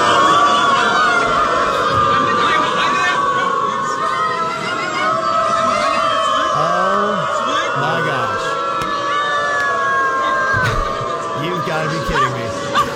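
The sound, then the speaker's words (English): Hundreds of people who identify as dogs bark and howl together in a continuous, dense din, with wavering howls rising and falling over overlapping yelps and shouts, loud and steady throughout. “So they got hundreds of them together to just bark and howl. Here's what it sounds like.”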